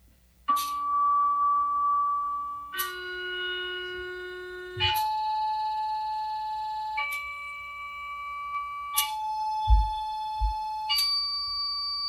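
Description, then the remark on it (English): In a cymatics demonstration, sustained electronic piano tones make a plate vibrate, ringing steadily and shifting to a new pitch about every two seconds across six notes, buzzing through the vibrating plate, with a few soft low thumps and no talking. “And now what happens when we make this plate vibrate from an electronic piano?”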